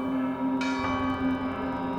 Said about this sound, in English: And just a few seconds later, the bells are not clinging any so distantly, but very close. And it seems that the whole city has suddenly started clinging with these warning and alarm bells.